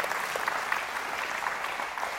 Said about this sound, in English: I don't care how God's plan looks to you. He has a purpose. You can clap for that. That's good. That's right.